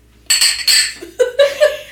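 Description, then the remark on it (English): Two bright, ringing clinks of glasses touching in a toast to Clara, a Romantic-era composer and pianist, each leaving a brief high shimmer, followed by a short murmured chuckle-like voice sound. “All right, here we go. Cheers.”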